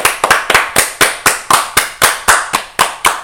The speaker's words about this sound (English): Can we get in a round of applause?